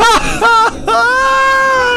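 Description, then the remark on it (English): A woman screams in three loud, high-pitched bursts: two short wavering shrieks, then a longer sustained one that holds steady to the end. “But I have a screaming lady!”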